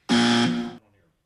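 A single loud, harsh buzzer blast on an ESPN Radio sports show holds a steady, brassy tone for under a second, then cuts off abruptly, leaving a brief faint tail.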